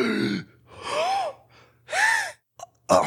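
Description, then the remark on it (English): A voice imitates a man sitting bolt upright and desperately gasping for air while clawing at his chest and neck: three strained, rising inhaled gasps in an uneven rhythm, followed by short choked catches, fairly loud with no words. “And this gentry man sits bolt upright and starts like gasping and like clawing at his chest and neck for air.”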